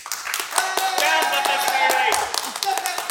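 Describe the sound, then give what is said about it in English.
An audience claps and cheers together during a clap-o-meter vote, a dense, steady patter of many hands lasting a few seconds, with some shouts and whoops mixed into the crowd noise. “And shall we hear the claps for Biff?”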